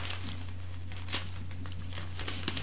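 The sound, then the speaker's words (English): A newspaper page is turned, giving soft papery rustles and crinkles with a couple of sharper crackles, quiet over a steady low hum. “I will now turn to the Insight page of the Gazette”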